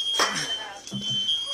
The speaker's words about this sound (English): Multiple alarms going off. Thick black smoke. Heavy thick black smoke.